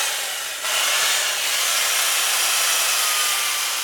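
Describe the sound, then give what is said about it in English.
Ice sculptor Chip Koser on the Cape grinds a power tool steadily into a block of ice, a loud, hissing whir that swells after a brief lighter start and holds unbroken, with no voices. “Most people on the Cape live for the summer, but Chip Koser prefers to hang out in the cold year-round with power tools.”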